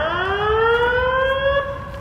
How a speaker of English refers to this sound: the campus alert system went off, and people scattered to get inside as best they could.